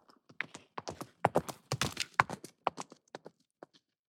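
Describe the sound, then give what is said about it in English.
A horse's hooves clip-clop, a recording from the Boom Horses Library, in a quick, uneven rhythm, with sharp strikes that bunch together in the middle and then thin out to a few slower steps. “Anyways, so here's a good recording of a horse.”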